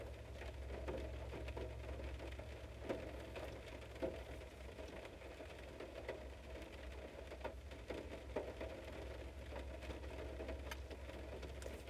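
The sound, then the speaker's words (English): Steady rain falls throughout, a continuous soft hiss dotted with small patters and drips, with a low constant hum underneath and no voices. “And yeah, you hear the rain. I like listening to it a lot.”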